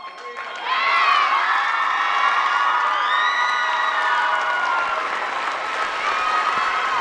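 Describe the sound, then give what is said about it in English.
A large crowd of middle and high school students in their auditorium erupts into loud cheering and applause at the reveal of an offer paying for college, with high-pitched shouts and whoops rising over steady clapping that stays intense and sustained throughout. “There was cheering, hugging, huge smiles from the senior class seated in the front rows.”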